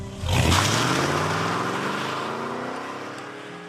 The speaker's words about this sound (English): The two detectives ran to the car and took off.